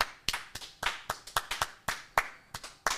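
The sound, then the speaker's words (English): A small studio audience claps in a thin, uneven burst: about a dozen sharp, crisp hand claps over three seconds, irregularly spaced and out of rhythm, with no voices. “Let's try to get a round of applause from the studio audience.”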